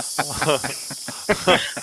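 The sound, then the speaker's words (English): A cobra hisses in a steady, airy rush that runs through the whole moment, while short voiced bursts and murmurs break in over it at intervals. “That's a cobra hissing everybody, in case you want to know.”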